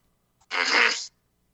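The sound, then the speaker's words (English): A single short, loud belch, a raspy burst lasting about half a second, heard alone with no talking around it. “Excuse me, I belched.”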